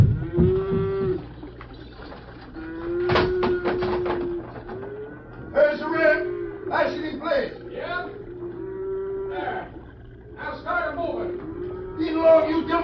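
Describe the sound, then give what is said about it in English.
Several cattle being driven onto a bridge and held there to be loaded onto a raft moo repeatedly in long, low, drawn-out calls, overlapping one another, with bursts of clattering and shuffling noise between the lowing throughout. “is rustling his own cattle.”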